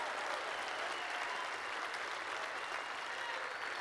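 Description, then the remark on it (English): An audience claps in praise of the Lord at the start of a church service, in a steady, dense wash of applause that holds at an even loudness throughout, with no pauses and no voices rising above it. “Can you just clap to Him and praise Him as their Lord?”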